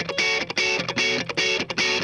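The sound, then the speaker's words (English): A clean electric guitar plays a short rhythmic chord figure with crisp, punchy attacks. Each strum starts sharply and rings briefly, with bright, clear tones and no voices. “a lot cleaner. And it's got more attack.”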